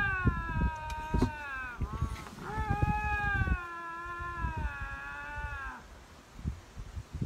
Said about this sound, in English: What in the hell is that? How did you get that footage of my cat asking for dinner? What is that?